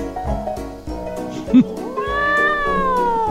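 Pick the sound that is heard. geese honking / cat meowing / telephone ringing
cat meowing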